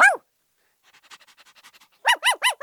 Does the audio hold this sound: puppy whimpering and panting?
yes